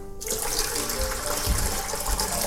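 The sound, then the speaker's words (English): Water pours steadily into a golden retriever puppy's dog bowl, a continuous splashing stream that starts abruptly and runs without pause, with no voices over it. “Yeah, give him some water in his bowl.”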